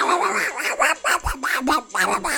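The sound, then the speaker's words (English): An Australian musk duck, during a mating ritual, gives a rapid series of harsh, voice-like calls that mimic human speech, sounding like the shouted words "You bloody fool!", loud, in quick syllable-like bursts. “If it walks like a duck and swears like a trooper, then it's probably an Australian musk duck.”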